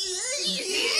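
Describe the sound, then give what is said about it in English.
A person imitates the screaming of the cartoon character Muscle Man, a loud, sustained high-pitched screech with a wavering, strained tone lasting about a second. “The only like Muscle Man imitation like thing that I can do is just his like screaming.”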